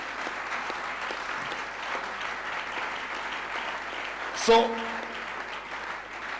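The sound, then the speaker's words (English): An audience claps steadily throughout, a dense, even wash of many hands, with a brief spoken word and a sharp louder burst midway before the applause continues. “Can you clap your hands?”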